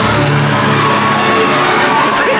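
A loud wrestling arena crowd roars and cheers continuously for Elizabeth, with scattered yells and whoops rising out of a dense, steady wall of noise.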